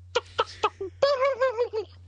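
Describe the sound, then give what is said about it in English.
A person imitates a turkey gobble to tell turkeys to get away: three quick clipped clucks, then a longer, loud, warbling throaty call that wobbles rapidly before trailing off, with no other talk. “Get away, turkeys. That's turkey speak for get away.”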